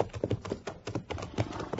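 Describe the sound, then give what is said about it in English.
Horse hooves clip-clop in a quick, steady rhythm on a hard surface, a run of moderately loud knocks with no voices. “Is that the horse you won the race with?”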